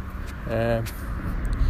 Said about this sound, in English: Cars are passing me.